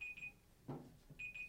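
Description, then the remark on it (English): A Google digital timer alarm beeps in short, high-pitched bursts, pausing briefly before the beeping resumes, with a soft thump and some low background noise in between. “What is that? The timer? Oh, it's the timer.”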